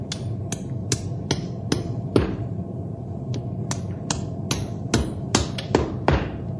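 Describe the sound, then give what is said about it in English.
A farrier hammers a shoe onto the hoof of a horse named Storm: a dozen or more sharp, bright strikes in an uneven rhythm, some quick pairs, over a steady low rumbling background with no talking. “I'll rasp his hoof smooth to the shoe, and he can run to his heart's content.”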